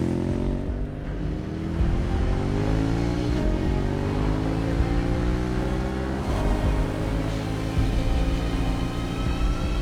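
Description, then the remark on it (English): A motorcycle engine revs loudly and steadily in a film's motorcycle sequence, its pitch climbing and surging as it accelerates, with no voices over it. “So this motorcycle sequence is actually one of the sort of few, there's a few little things that we did as second unit.”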